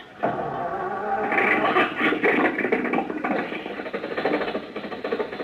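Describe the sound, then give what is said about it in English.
An old car engine in a garage sputters to life and keeps running with a loud, rough, clattering chug, steady for several seconds with no voices over it. “There you are, Rochester. The motor's going. Back the car out of the garage.”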